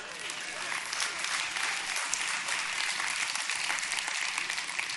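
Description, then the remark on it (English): Sustained applause from a sizable audience, mostly the women clapping, a dense, steady clatter of many hands clapping at once, fairly loud and continuous throughout with no talking over it. “Look at all the ladies clapping.”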